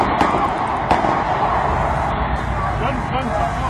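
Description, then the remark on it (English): Gunfire captured on a cell phone outside Parliament in Westminster, as officers shot an attacker who had stabbed a police officer: a couple of sharp cracks ring out early, over a harsh, noisy background with indistinct voices and what may be sirens. “Here's some sound from a cell phone video of gunfire during that incident.”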